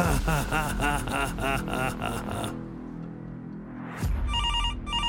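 A telephone rings with a rapid, repeating electronic trill, pauses briefly over a low hum, then starts ringing again with bright, pulsing tones. No one speaks.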